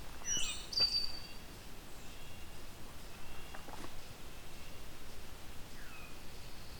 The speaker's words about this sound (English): So we've got the red-breast nuthatch yanking. Long yank calls. I'm gonna try to go in the direction of the red-breast nuthatch then.